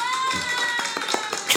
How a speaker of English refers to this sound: So let's give it up for Akira. Let me do my little round of applause.